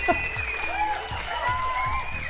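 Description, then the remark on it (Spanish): A crowd applauds steadily with dense, continuous clapping, mixed with rising and falling whistles and cheers throughout, at a fairly even loudness with no pause. “Y un aplauso otra vez, porque no mames.”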